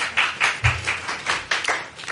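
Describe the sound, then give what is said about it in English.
A short round of applause: a handful of steady, crisp claps repeating at an even pace for about two seconds, moderately loud, with no voices. “I hereby nominate this person, this wonderful neighbor, to be a TP hero. Round of applause.”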